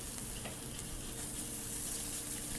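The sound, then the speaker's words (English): A steady, crackling sizzle of hand-sliced, salted steak searing on a hot stone at the table, continuous with fine popping spatters throughout and no voices. “And you can hear that sizzle right there.”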